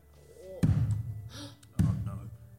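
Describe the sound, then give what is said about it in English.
Two heavy, dull thuds of books falling off shelves and hitting the floor, about a second apart, each a sharp low impact with a short rumbling decay over a faint background murmur. “The thump of books falling to the ground.”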